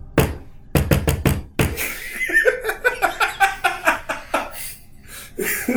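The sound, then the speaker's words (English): A quick series of sharp knocks imitating rapping on a door, followed by several seconds of rhythmic laughter from people. “You hear knocking on the door.”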